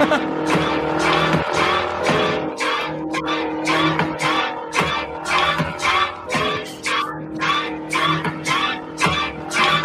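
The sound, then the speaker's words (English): A truck engine roars steadily while tires screech again and again in sharp, rhythmic bursts, loud and continuous throughout; the truck from the film Maximum Overdrive, with Green Goblin on its front. “It's going to be the car running people over, and then for some reason it goes back to the dude cleaning it.”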